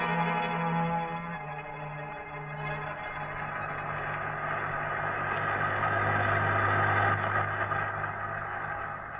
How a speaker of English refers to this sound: Here comes the right bus now.